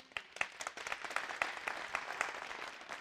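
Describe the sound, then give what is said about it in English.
An audience claps together for a seasoned minister brought in alongside the pastor, a dense, steady patter of many hands with sharper individual claps standing out, sustained at moderate loudness throughout without any voices. “Who could give a hand clap to that?”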